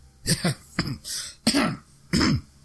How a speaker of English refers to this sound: The narrator coughs embarrassingly and continues in a somberer voice.